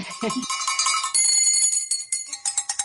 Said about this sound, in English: Around Nashville and around Tennessee, we all rang bells. And I rang one from here in New York.